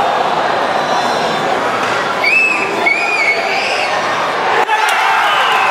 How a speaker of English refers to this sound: The cheers will only get louder for the Vancouver Giants, who are off to their best start in a decade.